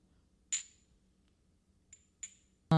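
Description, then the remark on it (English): Glasses clink together in a New Year toast at 11:37: one bright, ringing chime, then a faint tap and a second clearer clink, before a loud burst of noise cuts in at the end. No one speaks. “Cheers to the new year.”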